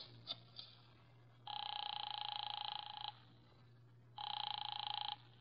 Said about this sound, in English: I drove down to the document research laboratory on Vanderbilt and got such a shock that I grabbed the office phone and dialed Wolf at once.